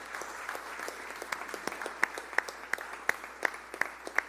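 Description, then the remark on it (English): An audience applauds, a dense wash of many hands clapping, with a few sharp, louder claps standing out in a steady rhythm toward the end. No one speaks. “Well, why don't we just give these guys a round of applause, and you guys can be seated.”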